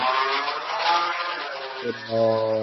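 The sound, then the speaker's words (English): Loud racing car engines roar and rev outdoors outside a house, a steady droning whine that dips in pitch as one vehicle shifts or passes, with no talking. “Apparently, Fast and Furious has happened outside of my house.”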